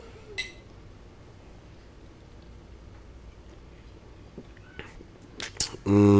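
Glasses of a 6.2% ABV beer clink together in a toast: one bright ringing chink early on, then a couple of sharper clinks near the end over a quiet hum, before a sudden louder burst.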